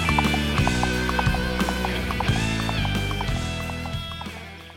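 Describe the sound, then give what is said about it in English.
The hooves of a horse called Mrs. Clippity-Clop clip-clop in a steady, brisk rhythm over a bed of music, the sound gradually fading as the horse rides away with its rider. “If he's a ghost, why does he need to ride the horse?”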